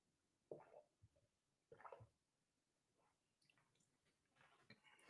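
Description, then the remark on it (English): Someone takes quiet sips of a drink during a live broadcast: two short wet slurps about a second apart, separated by near silence, with a faint click at the very end. “Take a sip and we'll get into the Detroit Lions.”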